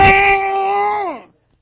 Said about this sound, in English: Can't talk, but she can cry. And she gave me the message. Daddy, close the windows, please, and turn the air conditioner on.